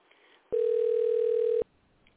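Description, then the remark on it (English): A telephone ringing tone heard while placing a call to the Department of Elections: one loud, steady, mid-pitched electronic tone lasting about a second, starting and stopping abruptly over faint background hiss, with no one talking. “Let's give them a call and see what's going on out there.”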